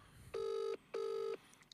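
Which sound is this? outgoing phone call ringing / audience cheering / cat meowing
outgoing phone call ringing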